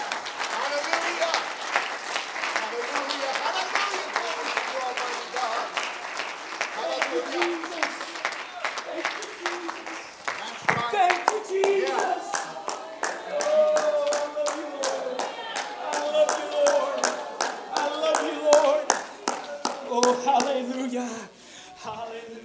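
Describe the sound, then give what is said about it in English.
A crowd claps steadily and loudly for over twenty seconds, clapping their hands unto the Lord, the dense rhythmic hand claps mixing with raised voices and shouts before fading out near the end. “I wish somebody clap your hands unto the Lord.”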